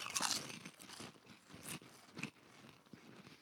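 Crisp crunching of honey butter potato chips being bitten and chewed, a loud first bite followed by several sharper crackly crunches at irregular intervals, with no talking.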